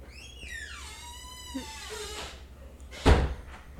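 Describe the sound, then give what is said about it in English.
A door creaks open with a long, drawn-out squeal of its hinges, then a sharp thud lands about a second later, as people come in through the doors, with no talking. “They're coming in through all the doors.”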